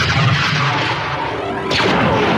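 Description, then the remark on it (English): A massive sci-fi energy beam, the Death Star's superlaser, fires at the planet Alderaan with a loud, sustained roaring blast that surges sharply again near the end, dense and booming like heavy artillery, with no voices. “With mighty flash, the beam bursts bright and shrill.”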